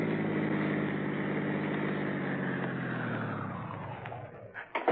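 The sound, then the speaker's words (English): A taxi's engine drones steadily, then its pitch sinks as the car pulls around a corner, slows, stops and idles, ending with a few sharp clicks and knocks. No one speaks. “Pull around this corner and stop.”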